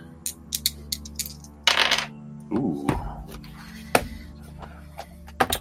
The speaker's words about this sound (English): All right, let me get the magic dice here.